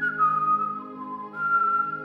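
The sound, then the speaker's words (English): A person whistles a quick two-part call back to a bird that had whistled earlier, a steady held note that dips, pauses briefly, then rises again, clear with no talking. “looks back up at the bird who was whistling to him earlier and just does a quick...”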